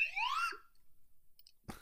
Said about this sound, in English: Here goes the slide whistle. Whoop.